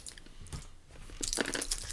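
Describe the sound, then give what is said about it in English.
Someone crunches hard mini M&M's candies with loud, sharp, brittle cracks, quieter bites at first and then a burst of rapid grinding crunches. No one speaks. “These are hard. That is just rock candy.”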